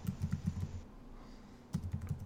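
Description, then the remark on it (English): Rapid typing on a computer keyboard while adding notes: quick, uneven clicking keystrokes in a burst, a brief pause of near silence, then another flurry of clicks. No one speaks. “Oh, adding notes. Typey, typey, typey.”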